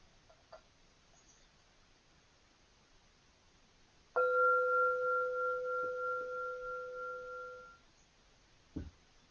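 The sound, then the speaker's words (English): A meditation bell is struck once after a quiet pause, its clear, steady tone ringing for several seconds with a gentle wavering pulse before fading out. No one speaks. “I'm going to ring a bell and ask you to join me in saying the rope chant three times, and then I'll ring the bell three times at the end.”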